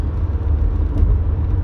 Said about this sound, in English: But just to show y'all that we're in a car, as if you needed any reminder of that.